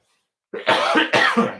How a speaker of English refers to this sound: Excuse me, I had to cough.